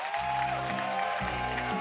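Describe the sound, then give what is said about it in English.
Steady crowd applause for a group as they come in, a dense wash of clapping, with sustained low musical chords underneath that shift a couple of times. “So can you give them a round of applause as they come?”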